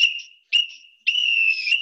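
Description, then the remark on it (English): A referee's final whistle sounds three shrill blasts, two short and a final long one, loud, with no talking. “There goes the final whistle.”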